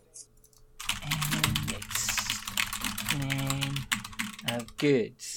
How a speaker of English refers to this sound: The computer's getting mad at me. Stop typing like a psychopath!